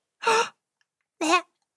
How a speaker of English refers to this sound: That was a very tiny meow. Are you... Oh my goodness, it's the teeniest, tiniest little kitten I have ever seen.